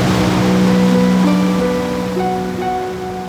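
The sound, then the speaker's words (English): Ocean waves wash steadily onto a beach in a continuous, fairly loud rush of surf, with a low droning hum running underneath and no voices. “The moon pulls on the ocean waters on the Earth, making the tides come in and out each day at the beach.”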